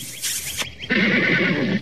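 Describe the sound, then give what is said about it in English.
A horse whinnies loudly, a shrill, wavering neigh lasting about a second after a brief breathy snort, with no one speaking. “A horse is a horse, of course, of course.”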